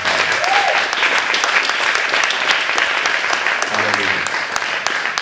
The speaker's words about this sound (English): I just want you, Church of the Living God, to give a clap offering to your beautiful pastors.